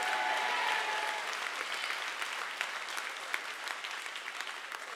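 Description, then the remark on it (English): An audience claps together in sustained, dense applause that fills the room, with a few sharper individual claps standing out near the end and faint crowd murmur underneath. “Come on, clap your hands and say a good amen.”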